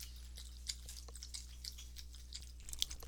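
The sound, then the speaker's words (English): A pet laps water in a quick, steady rhythm of soft wet clicks and slurps, fairly faint over a low constant hum, with no one talking. “Someone's thirsty.”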